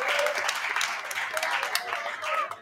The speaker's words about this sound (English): So give yourselves a round of applause for making this awesome. We appreciate it.